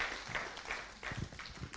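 A round of applause: many hands clapping in a dense, steady patter that stays fairly soft and even for about two seconds, with no voices.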